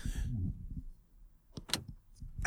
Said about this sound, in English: the car locking